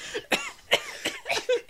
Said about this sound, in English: Coughing up blood.